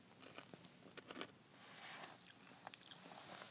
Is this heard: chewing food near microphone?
yes